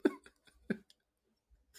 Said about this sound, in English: just cough a lung away quietly.